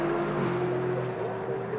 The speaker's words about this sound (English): Still these two GT cars battling away. Still Ross Gunn looking for a way by.